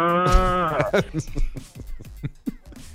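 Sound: cow mooing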